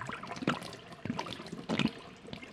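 Thick milk glugs out of a glass bottle as it is poured away in a kitchen, in uneven bursts, three or four gurgling pulses with a splashing trickle between them, fairly quiet, with no voices.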